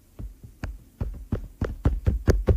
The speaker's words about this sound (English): Those are my footsteps.